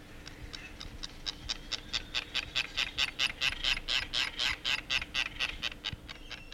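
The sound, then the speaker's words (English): A white tern (fairy tern, Manu'oku), a medium-sized native Hawaiian seabird with a black bill and all-white feathers, gives a rapid series of harsh, raspy chattering calls in a steady rhythm, swelling louder through the middle and then easing off, with no voices. “Manu'oku, also known as white terns or fairy terns, are a medium-sized native Hawaiian seabird that can also be found in many tropical and subtropical oceans throughout the world.”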